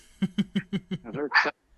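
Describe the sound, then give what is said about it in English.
A quick run of five or six sharp, evenly spaced dog barks rising into a higher-pitched yelp, moderately loud, with no one talking. “Oh, see, even the dogs agree.”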